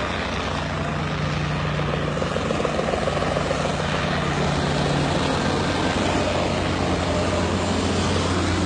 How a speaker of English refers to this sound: Yeah, so I'm flying to Monaco, but not just going to Monaco, I'm going by helicopter.